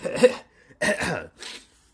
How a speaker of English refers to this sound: let me clear my throat.